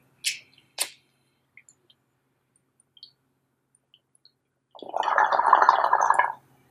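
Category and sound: household object, bong hit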